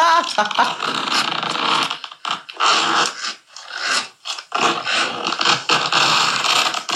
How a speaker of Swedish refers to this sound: Det är en dragkedja någonstans. Det är en ganska dålig boots, dragkedja. Eller? På ett par trög handväska. Har din handväska?